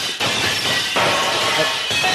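A loud, sustained crash of breaking dishes and shattering crockery, with bursts of clattering impacts over about two seconds and no voices.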